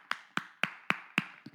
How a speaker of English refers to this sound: I will clap like this.